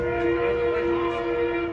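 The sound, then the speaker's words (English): A Metro commuter train's horn blares in the distance in one long, steady, sustained blast as the train approaches a small plane crash-landed on the tracks in Los Angeles, loud, with a low rumble underneath and no voices. “A pilot stuck in a cockpit after crash landing on train tracks, while in the distance, a terrible sound.”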